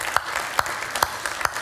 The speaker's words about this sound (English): Let's give them a great big round of applause for all the moms this morning.